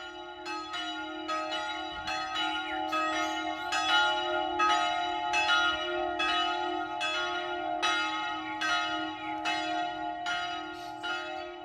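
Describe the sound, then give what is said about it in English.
Church bells in the belfry of a Brutalist-style church in Münster, cooled by an air conditioning unit installed by Wynne Evans so they ring at a slightly higher pitch, peal continuously with rapid, overlapping strikes over a sustained, humming resonance. Steady and full, with no voices. “With the change in temperature, the bells ring at a slightly higher pitch, hardly perceptible to the human ear.”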